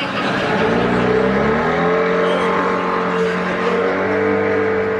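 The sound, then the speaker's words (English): An outboard motor revs loudly and steadily, its droning engine tone climbing slightly in pitch as it runs for several seconds, with no voices over it. “I have an outboard motor.”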